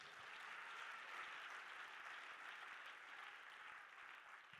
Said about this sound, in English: In Jesus' name, would you clap your hands to the Lord?